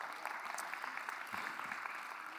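A crowd claps steadily as people come up on stage, the dense patter of many hands filling the whole short stretch at an even, moderate loudness with no voices standing out.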